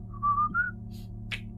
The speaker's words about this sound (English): And you're walking straight past Experimental 2. I'm just going to quick walk, whistling on by.